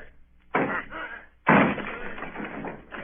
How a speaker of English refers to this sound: Down with the door, then! Aye!